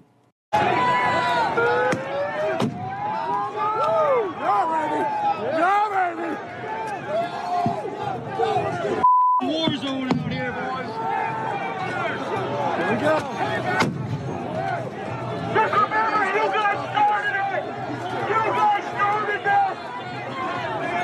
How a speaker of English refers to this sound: By the way, video from January 6th does show this. Peaceful protesters gathered, and then the police throw a stun grenade into the middle of the crowd.